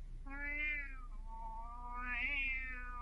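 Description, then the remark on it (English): A white tomcat crouching in the lower boughs of an ash tree gives one long, drawn-out meow lasting about three seconds, rising, dipping, then swelling again near the end. It sounds clear, with no other voices. “Kitty, what do you see there, inside the ash?”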